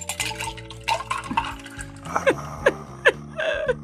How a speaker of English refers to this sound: And let me pour my drink. Maybe the mic can pick this up here.